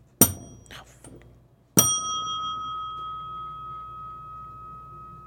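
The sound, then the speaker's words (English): A bell is struck twice: a first short ding, then a second strike that rings out with a long, clear, slowly fading tone. It stands alone, with no talking. “Hang on, I didn't let the bell go.”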